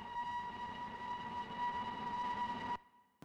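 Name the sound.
train horn sound effect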